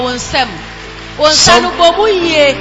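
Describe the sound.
A church audience applauding people who come forward to follow the Pastor, a dense crackle of many hands clapping at once, steady and fairly loud, with voices speaking and calling out over the clapping.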